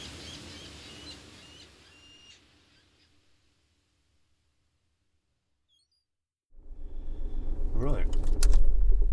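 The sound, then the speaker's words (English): Low outdoor traffic rumble in a car park called the Quay, by the water in the historic town of Kingsbridge, fades into near silence, then loud rustling builds, ending in a bright jangle of keys. “So, so here we are in the car park.”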